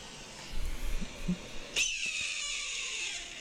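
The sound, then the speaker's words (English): A single harsh, raspy red-tailed hawk screech bursts in partway through and trails off in a long, slightly descending cry, loud, after a few soft low thumps. “Wait, oh, here we have red-tailed hawk and eagle.”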